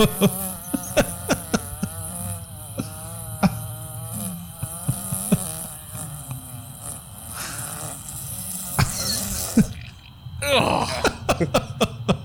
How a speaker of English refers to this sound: What you just heard, people at home, it's a dog just taking a long ass fart and then just something wet at the end.